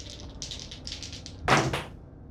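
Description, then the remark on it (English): Several dice, rolled all at once for an initiative roll in a tabletop role-playing game session, rattle with a run of quick, light clicks, then tumble out in a louder clattering burst of two sharp knocks before settling into quiet. No one speaks. “All right, I'm going to roll all dice at once, as usual.”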